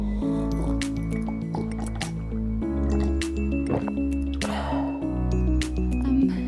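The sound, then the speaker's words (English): Someone gulps down a liter of water as fast as possible, with a quick run of wet, squishy swallowing sounds over a steady musical background. “And to prove how beneficial it is, I'm going to scull 1 liter of water as fast as I possibly can.”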